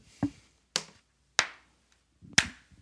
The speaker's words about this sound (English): Okay, I'm going to put one more clap here.